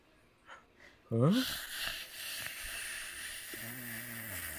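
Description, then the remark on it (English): Loud, breathy rasping erupts with a snorting start and keeps going steadily: a person with a cold breathing heavily on someone's neck during a ride at Disney. A voice begins murmuring under it near the end. “Is that you breathing on my neck?”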